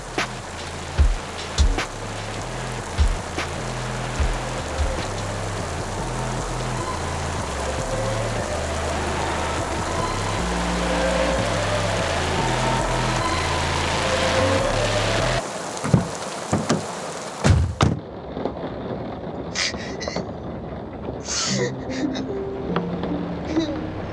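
rain falling

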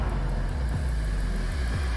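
car accelerating

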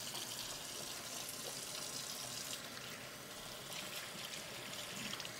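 tap water running

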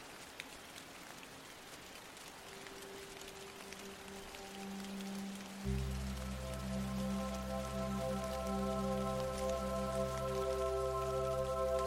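steady rain falling

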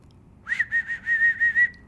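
human whistling

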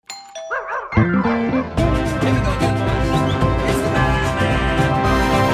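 doorbell ringing

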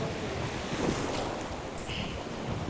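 flowing river water

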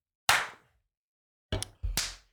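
high five hand slap

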